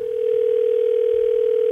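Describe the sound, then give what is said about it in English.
A telephone line tone as a call to the post office (United States Postal Service) waits to be answered: one steady, unbroken mid-pitched hum holding at an even, fairly loud level for the whole stretch, with no voices. “she had to call the post office, and this is what happened.”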